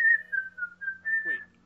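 A person whistles a short, wavering tune close by, several sustained notes gliding up and down in a steady melodic phrase with a faint hum underneath.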